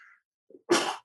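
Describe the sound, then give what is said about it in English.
A single loud sneeze: a short sharp intake of breath followed by an explosive, breathy burst lasting about a third of a second, with no talking around it. “pardon me. Bless you.”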